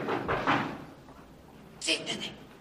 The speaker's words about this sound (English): And then there's a knock at the door.